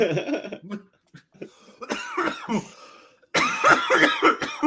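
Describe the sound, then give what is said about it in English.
A person coughs repeatedly in rough, hacking bursts, with a loud final fit of harsh, wheezy coughing. No talking. “Come on, cough it up, mate. You didn't mute.”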